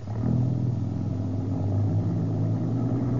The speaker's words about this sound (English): Hey, the general's staying. The trucks are pulling on out without him.